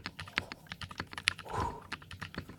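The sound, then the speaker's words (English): Rapid typing during a typing test on a mechanical keyboard with factory hand-lubed Kinetic Labs Moon switches and a Game Boy themed GMK DMG keycap set: smooth, muted keystrokes, a steady flurry of soft thocks and clacks, with no voices. “They're called the Kinetic Lab Moon switches, which are actually hand lubed from the factory. So they sound really nice without any effort.”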